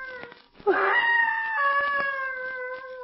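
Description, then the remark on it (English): An eerie, gibbering cry from deep in the woods bursts in suddenly and holds a high, wavering, almost human wail for a couple of seconds, loud and unaccompanied by any voices. “That cry sounded human. It's like a scream of mortal terror.”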